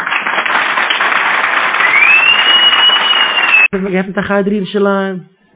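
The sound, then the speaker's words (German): An audience claps in a dense, steady patter for several seconds while a thin whistle rises over it; the applause cuts off abruptly and a voice starts speaking. “Lass jedem klatschen für dich.”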